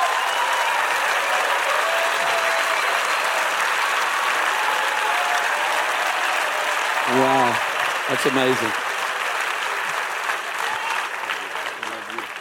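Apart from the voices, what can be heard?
audience applause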